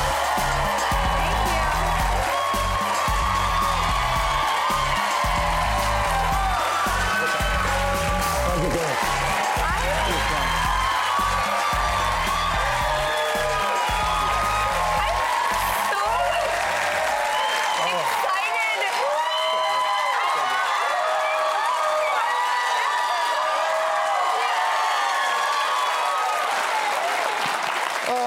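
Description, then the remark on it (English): A large TV show studio audience claps and cheers loudly for nearly thirty seconds as comedian Sebastian Maniscalco is welcomed, with a band playing underneath for the first two-thirds before the applause carries on alone, dense and steady. “I gotta tell you, the crowd is great today, and thank you for having me on the show.”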